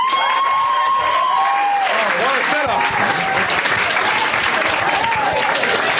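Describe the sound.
A crowd breaks into loud, sustained applause with scattered cheers and whoops, dense clapping lasting several seconds, a voice briefly heard at the start, as an audience welcomes the next storyteller being introduced.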